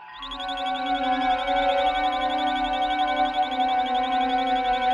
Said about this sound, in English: I'm getting that radio sound again, sir. 9 seconds right ascension from galactic plane. Dead ahead and closing fast.